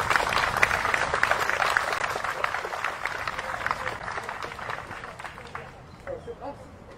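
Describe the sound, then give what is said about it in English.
A crowd applauds Congresswoman Gwen Moore, a dense wash of many hands clapping that holds steady for several seconds, then thins and fades out, with a few voices and whoops mixed in toward the end. “How about a big round of applause for the Congresswoman?”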